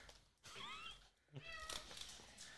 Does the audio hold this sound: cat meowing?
yes